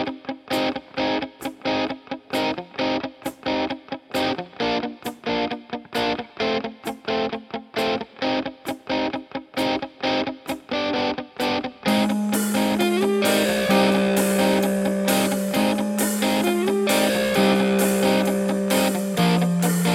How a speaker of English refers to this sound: Well, hey, let's listen to some loud guitars, and then we'll get into talking about the week that was in the WCHL and the week ahead.